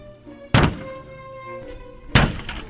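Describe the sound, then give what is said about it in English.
A car door is deliberately smashed to dent it before a repair attempt: two heavy, hollow metallic thuds about a second and a half apart, each a sharp loud blow that rings briefly over a soft, steady tonal background. “I'm going to smash my door and then I'm going to attempt a door repair”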